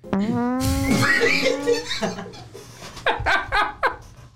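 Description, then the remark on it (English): A buzzy, rising fart sound effect blares for about a second, then breaks into bursts of noisy laughter and snickering that pulse on to the end. “What do you play? The fart noise.”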